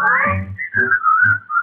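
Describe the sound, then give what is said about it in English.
Someone whistles a bright, wavering melody, the notes sliding smoothly from one to the next, with low instrumental chords pulsing underneath. “You will be in style if you pucker up your lips and keep a whistling all the while.”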